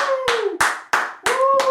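applause

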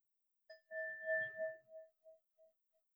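meditation bell ringing

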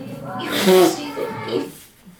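nose blowing

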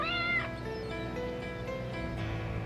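cat meowing

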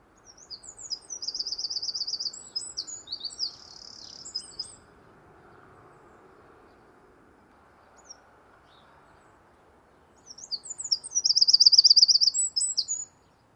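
bird singing

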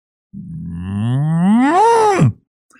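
cow mooing

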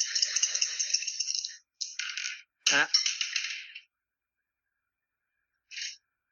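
dice being rolled

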